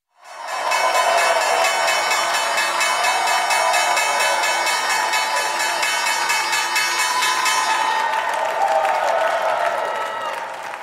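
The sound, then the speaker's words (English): At the U.S. stock market opening bell on Friday the 13th, a crowd claps and cheers steadily for about ten seconds while a loud, sustained electric bell rings over it; the bell stops near the end and the clapping carries on briefly. “And that was the opening the bell on Friday the 13th.”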